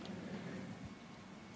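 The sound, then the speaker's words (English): Quiet pause filled with faint low room noise, ending in a single short gulp-like sound as a speaker sips water during a water break; no talking. “Only said that because I needed a water break.”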